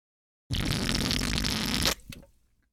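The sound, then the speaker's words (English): A loud, sustained slurp of a fizzy drink lasting about a second and a half, noisy and bubbly, then cutting off into faint crackling fizz as it trails away. “I want to say that's your usual, but that slurp sounded to be a lot more carbonation than usual.”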